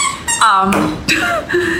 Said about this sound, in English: We're just, that squeaky toy, it's not a baby on the floor with a squeaky toy. Don't freak out, it's a puppy.